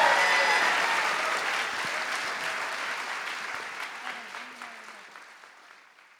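An audience claps in a dense, steady wash of applause that gradually fades over several seconds, with no voices standing out.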